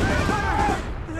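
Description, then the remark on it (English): A heavy blast of an incoming artillery shell mixed with gunfire during a battle fills the short moment. The explosion shakes the ground and throws dirt and debris into the air, a dense roaring rumble with rising tonal whines riding over it before it starts to ebb. “As we made our way to a bunker with a machine gun, we heard the sound of incoming artillery, and they dove for cover. The explosion shook the ground and sent dirt and debris through the air.”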